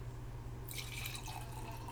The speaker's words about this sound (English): Gotta pour the wine because everything is just a little bit better with a beautiful glass of wine.